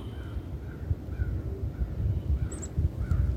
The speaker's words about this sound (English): Raven says hello. Crows too, the wind says hello.